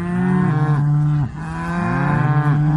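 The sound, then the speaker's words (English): Two long, loud cow moos follow one another back to back, each a drawn-out, droning bellow with a slight pitch bend, clear with no talking. “So cool, but I miss the cattle.”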